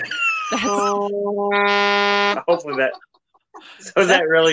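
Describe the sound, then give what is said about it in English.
A phone alarm notification blares as a loud, steady, buzzy tone lasting about two seconds, with people talking briefly before it and chatting again right after it stops. “That's the trauma alarm. Yeah, you're gonna have to turn like the notifications off or something.”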